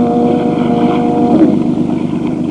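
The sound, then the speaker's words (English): A motorboat engine running on a river on a dark, moonless, starless night as fog drifts in drones steadily with a low, throbbing hum and faint tonal whine, a constant loud rumble over rushing wind and water, with no voices. “As I was easing my boat toward what I thought was the shore, the motor quit.”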